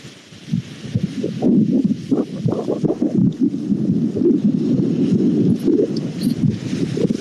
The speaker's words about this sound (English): Ah, the sounds of the ocean.